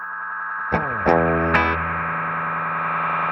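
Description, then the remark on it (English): A guitar effects unit with a feedback circuit pushed into self-oscillation: a few sharp plucked attacks swell into a loud, sustained droning howl of stacked tones that holds steady without any voices. “Oh, self-oscillating.”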